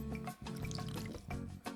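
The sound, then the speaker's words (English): A short slurping sip of a canned Jack and Coke cocktail (12 fluid ounces, 7% alcohol), with wet liquid gulps and faint bubbly crackle over about two seconds, no talking. “That was a sip. I heard a sip.”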